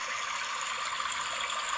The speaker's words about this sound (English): Yeah, stream sounds right.